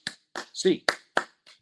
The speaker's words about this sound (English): In the meantime, UCLA fans, hands up, 8 clap time, baby. And 1, 2, 3, 4, 5, 6, 7, 8.